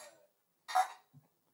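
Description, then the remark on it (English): Glasses clinking together in a toast: one bright, sharp clink that rings briefly and fades, followed by a soft low thud. No one speaks. “Do a quick cheers.”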